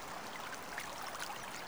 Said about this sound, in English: Water flowing over rocks. You see a brook. The sound of the water is relaxing.